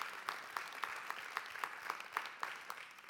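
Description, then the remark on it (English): An audience at a church service applauding to thank God for Jesus and the resurrection, dense steady clapping with a few sharper claps standing out at a regular pace, sustained throughout at moderate loudness with no voices. “In fact, let's just give God a big round of applause and say thank you for Jesus and the resurrection.”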